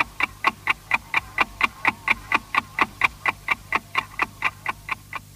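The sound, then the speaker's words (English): A steady ticking clock used as the interval signal of Austrian public radio RAVAG, the Radio Traffic Company, from 1924 until 1938, about three and a half ticks per second, clear and regular against a faint low hum, with no voices. “The good old ticking clock, which was used between 1924, when public broadcasting started in Austria by RAVAG, short for the Radio Traffic Company, up until 1938”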